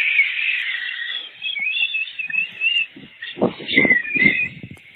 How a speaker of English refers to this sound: So the idea is for a tea kettle. Right, that sounds like a tea kettle.